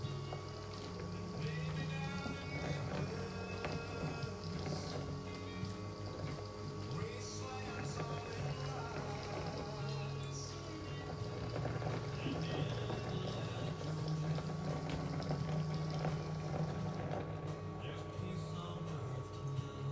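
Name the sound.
hot water being poured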